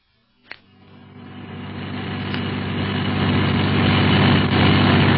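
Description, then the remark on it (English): A sharp knock, then a car engine starts up and grows steadily louder, a dense low rumble that builds over several seconds as the car gathers speed, driving fast in Casablanca. “We'll get a car of our own and go to that address.”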